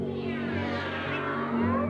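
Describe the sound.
A human voice imitates a cat's meow in a drawn-out, wavering cry, moderately loud, with steady low musical tones humming underneath.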